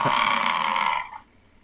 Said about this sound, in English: What was it? Is it someone snoring? No, it's a bison.